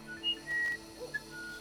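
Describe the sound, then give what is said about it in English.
A bird of paradise perched on a woman's shoulder in a garden on a warm, sunny day calls in a few short, thin, high whistling notes, soft and spaced apart, with no one speaking. “A bird of paradise rested on her shoulder.”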